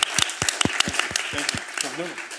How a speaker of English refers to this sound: Thank you. Applause, please. Applause.